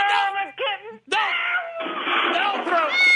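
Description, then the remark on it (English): A cat yowls loudly in a few drawn-out, wavering cries, broken by a brief pause before a longer, strained howl that rises and bends in pitch, as it is thrown with a catapult. “Don't throw a cat. The cat has been thrown.”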